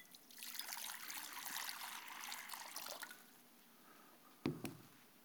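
Water pours in a steady, splashing trickle into a basin for about three seconds during a foot washing, then stops, followed by a quiet pause and a single hollow clunk, like a vessel being set down.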